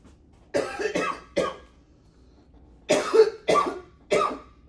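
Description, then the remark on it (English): Two bursts of harsh coughing, three sharp coughs in quick succession each time, separated by a short quiet pause. No talking. “Are you coughing? Or you are. Are you choking?”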